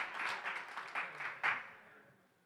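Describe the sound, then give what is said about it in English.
A crowd claps together in a steady, quick rhythm, the sharp bursts of many hands landing almost in unison before thinning out and fading away after about a second and a half. “Everybody should be clapping on that one.”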